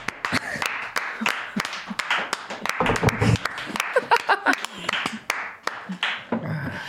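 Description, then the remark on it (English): An audience claps steadily for several seconds to applaud someone's entrance onto a set, a dense patter of sharp hand claps with a few voices and cheers mixed in. “Thanks for applauding my entrance.”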